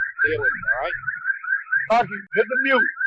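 A car alarm in New York drones with a steady high-pitched wail for the full few seconds, while other warbling tones and murmuring voices overlap it at moments.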